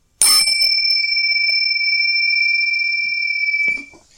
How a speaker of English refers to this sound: That was Matt's angry bell clanging because he forgot.